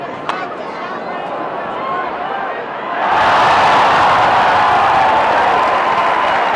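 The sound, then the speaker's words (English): A large spring training baseball crowd at Salt River Fields, Arizona, in March 2017, watching the Chicago Cubs play the Arizona Diamondbacks, murmurs and chatters, then about halfway through erupts into a loud, sustained cheer that roars on steadily until the end. “The flood of people who come to see baseball in Arizona crests in March, which was when this crowd saw the then-defending world champion Chicago Cubs play the hometown Diamondbacks at Salt River Fields in 2017.”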